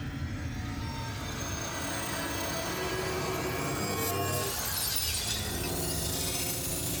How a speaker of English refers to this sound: And listen. The glass is screaming.